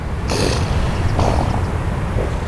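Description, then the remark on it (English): Fuzzy silver elephant seal pups on the beaches of Año Nuevo State Park, between Santa Cruz and Half Moon Bay, snorting as they train to hold their breath: a couple of short, breathy, noisy bursts and a fainter third one over a steady low rumbling background, with no talking. “Fuzzy silver elephant seal pups lie strewn across the beaches of Año Nuevo State Park, between Santa Cruz and Half Moon Bay, filling the air with a chorus of snorts.”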